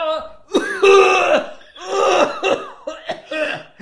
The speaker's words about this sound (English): Just hacking cough. She just like lost it in the middle of her song.